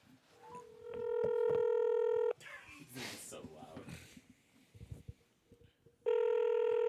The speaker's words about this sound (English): Just call. Start calling him. And then we're going to put the phone down over there. Yeah, it's on speaker. Perfect.